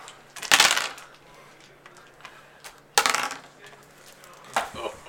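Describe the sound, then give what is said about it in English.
Dice clatter and tumble across a tabletop in three separate bursts, each a sharp rattle that quickly settles, with quieter clicks in between. “Hand me some dice, please.”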